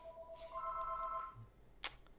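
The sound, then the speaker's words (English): A phone's electronic ring sounds in steady, layered tones for about a second, then stops, followed by a single sharp click. It is fairly quiet, with no talking. “What a phone call.”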